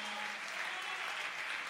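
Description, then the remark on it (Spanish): An audience claps steadily together in applause to the Lord, a dense, continuous wash of many hands filling the whole short stretch with no voices rising above it. “Un fuerte aplauso al Señor con el corazón.”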